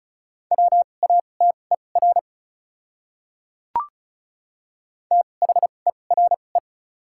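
Fast Morse code at 35 wpm with 2x character spacing, sending words from a list of the top 100 words: quick, steady mid-pitched beeps keyed in two short bursts, separated by a pause broken only by a single sharp click. No voices.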